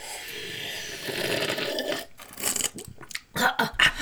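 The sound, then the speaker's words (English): A long, airy slurp of hot coffee, followed by a few sharp, sputtering bursts like a near-choke or cough from slurping too hard. “Slurping on some good old bean juice. Should we give them a slurp sound?”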